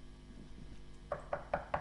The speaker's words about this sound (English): The knock on the door. Somebody calling him saying, come, we need to, can you please come?